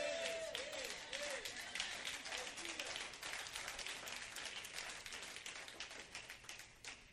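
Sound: audience applauding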